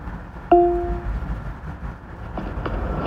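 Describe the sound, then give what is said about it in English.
A subway train approaching on the downtown track rumbles steadily, a continuous low roar with faint rattling, and a short electronic chime sounds near the start. “There's a train approaching on the downtown track.”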